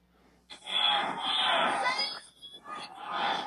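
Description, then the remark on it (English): A crowd of people outside a courthouse screams at full volume, a dense wall of high, strained voices that bursts in after a brief quiet, dips for a moment, then surges again. “These are people outside the courthouse screaming at the top of their lungs.”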